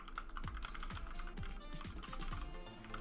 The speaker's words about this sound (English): What happened? Is it... Oh, you're typing,